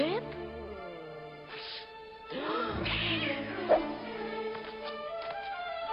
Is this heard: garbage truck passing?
no